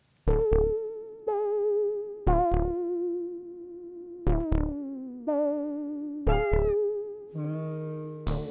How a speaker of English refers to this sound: But if you want to really see X inactivation in action, look no further than a tortoiseshell cat, which, unsurprisingly, Mary Lyon owned.